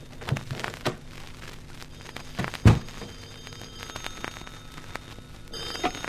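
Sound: telephone ringing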